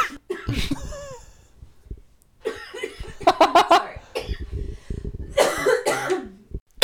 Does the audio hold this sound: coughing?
yes